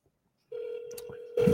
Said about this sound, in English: Let me call him on this other phone and say, see where he's at.